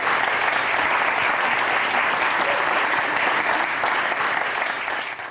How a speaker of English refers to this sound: We have her here to tell us about the artificial cryosphere. A big round of applause for Nicky Twilley.